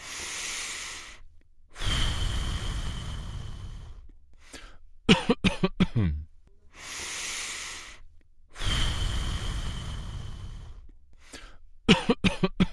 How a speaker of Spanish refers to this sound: se debe hacer antes de cada tos y la tos debe ser profunda y prolongada como el producir el esputo de manera profunda dentro del pecho. Una respiración y una tos deben repetirse aproximadamente cada 2 segundos.